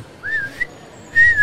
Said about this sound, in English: Oh, are you whistling at me? Do you want me to come back?